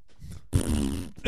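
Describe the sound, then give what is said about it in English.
A voice blows a wet, buzzing raspberry imitating a fart, one sustained burst of about half a second, loud, after a soft murmur and before a brief vocal sound. “Yeah, I farted, dude.”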